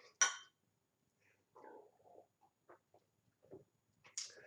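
glasses clinking

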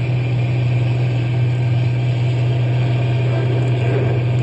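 truck engine running

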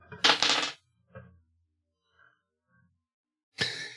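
dice being rolled

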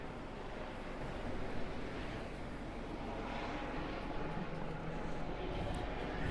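helicopter circling overhead

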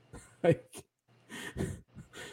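hiccup

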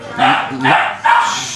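dog barking

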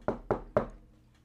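knocking on a door

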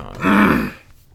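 throat clearing

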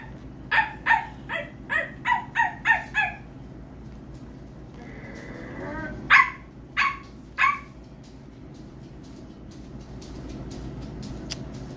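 dog barking

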